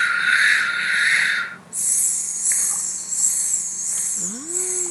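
Someone demonstrates slow rhythmic breathing, timed to arm strokes and breathing in as if through a straw, in for three strokes and out for six: a long, airy hiss of breath drawn in, then a higher, thinner hissing breath that swells and fades in a steady pulse, with no talking.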